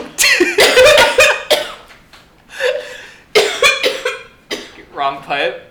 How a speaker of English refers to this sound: Wrong pipe! You won't be crippled. Oh, you're doing, like, the throw-up coughing. Guys, I'm fine. Sorry about that.